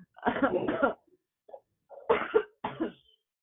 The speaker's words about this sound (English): And I would have been there, but I'm getting over a little bit of a cough.